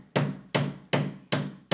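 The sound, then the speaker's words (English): A headboard bangs against a wall in a steady rhythm as a couple have sex, a woman's head pushing up against it: five loud, heavy thuds about two and a half per second, each with a short ringing decay, and no voices. “And her head is banging up against the headboard.”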